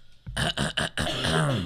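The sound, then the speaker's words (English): Three quick, harsh, loud coughs in close succession, trailing into a rough, strained throat sound. “turns to cough.”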